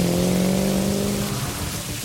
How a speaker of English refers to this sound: And as Torash finally touches down in the crowded lot, a cyberpunkish motorcycle just whips by, barely missing your ship.